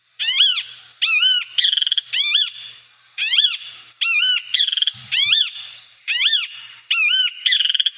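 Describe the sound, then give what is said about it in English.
A kiskadee, a bird with a yellow breast, brown back and black mask over its eyes, calls over and over, loud, in a rapid series of harsh, buzzy, rising-and-falling notes that come in quick bursts with short pauses between them. “This kiskadee has a yellow breast with a brown back.”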